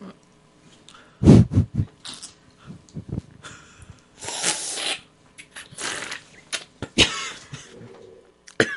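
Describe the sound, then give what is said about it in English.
A run of harsh, irregular coughs, some in quick bursts, with wheezy, raspy breathing and throat-clearing filling the gaps between them. “And here comes the coughing.”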